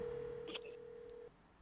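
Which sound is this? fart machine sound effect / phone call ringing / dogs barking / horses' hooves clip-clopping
phone call ringing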